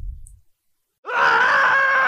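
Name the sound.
person screaming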